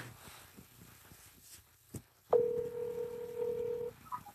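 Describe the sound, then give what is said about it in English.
A click, then a loud, steady two-note telephone keypad tone held for about a second and a half before cutting off, as a call is dialed on speakerphone, with faint background noise around it and no talking. “I'm going to give him a call back now, and then we're going to go live with it. I'm going to put it on speakerphone.”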